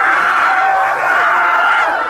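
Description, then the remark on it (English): A loud, dense crowd celebrating in Philadelphia roars and cheers continuously as a man eats horse dung off the ground, a sustained wall of many voices with shrill yells and screams rising above the din throughout. “And as you can tell from the roar of the crowd, he did, in fact, eat it.”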